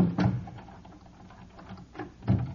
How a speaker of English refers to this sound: will you lock the door, please? Certainly.